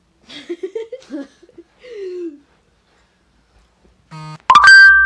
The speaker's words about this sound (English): I got a notification. No one's probably going to hear that because it's so far into the podcast.